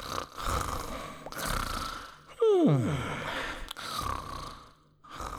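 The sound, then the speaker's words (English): A dolphin snores while napping: breathy, rumbling snores repeat in slow cycles, broken midway by a loud, squealing downward-sliding cry, all echoing around a stony cave, with no talking. “In just a few moments, the dolphin snores echoed around the stony cave.”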